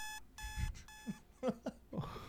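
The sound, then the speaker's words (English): An alarm clock rings in sharp, repeated, loud electronic bursts with brief gaps between them, followed by a few short thumps and rustling movement. “Most people set their alarm about 6 o'clock if they've got to go into work at 8. There's one.”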